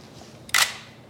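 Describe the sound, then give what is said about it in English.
A single crisp camera shutter click, a brief bright burst lasting about a tenth of a second, sounds alone against quiet background hiss. “Now I'm gonna snap a photo.”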